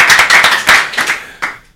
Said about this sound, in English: Give him a hand. Thank you.